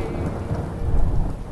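A thunderstorm in Natchez, Mississippi, with steady, heavy rain hissing down and a deep, rolling rumble of thunder swelling in the middle, fairly loud, with no voices.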